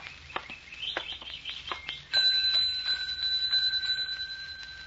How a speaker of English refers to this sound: Oh, there's a bell over there on the desk. That might be a help.